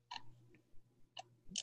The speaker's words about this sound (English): I hear clicking.